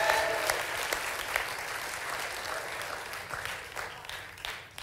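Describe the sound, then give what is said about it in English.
A Christian audience claps for the Lord in sustained, dense applause, many hands striking in overlapping bursts that hold a steady loudness throughout, with no voices rising above it. “Come on, if that's you, let the Lord hear your hand clap today.”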